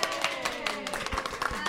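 An audience at a Potterwatch panel event applauds the moderators, many hands clapping at once in a dense, crackling wash that holds at a fairly even level throughout, with sharper individual claps popping out now and then.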